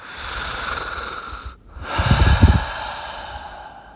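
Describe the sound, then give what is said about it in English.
Heavy breathing of a person in the lift lobby outside a lift, loud and airy, with a brief pause midway before a rougher, huskier exhale. No one speaks. “And that was when he heard someone breathing.”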